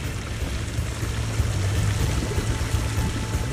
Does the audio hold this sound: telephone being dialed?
no